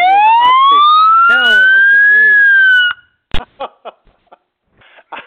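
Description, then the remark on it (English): A loud fire truck siren sound effect sweeps upward in a single rising wail for about three seconds, then cuts off abruptly and a person starts talking. “Okay, that was a crash, but it was supposed to be a fire truck.”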